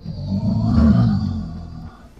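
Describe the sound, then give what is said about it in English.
A deep, rumbling bellowing roar from a monster as its wounds repair themselves, swelling and sustaining for about two seconds before tapering off, loud, with rich low-end growl and no voices. “And as you say stop it, it unleashes this bellowing roar as it goes.”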